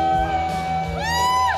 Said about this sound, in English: Listen to all that screaming.